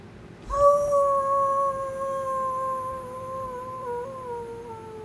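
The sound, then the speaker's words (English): A single long, steady wolf-like howl voiced by a person, rising sharply then holding a sustained wavering tone for several seconds, loud with no talking. “Would you like to howl for everybody?”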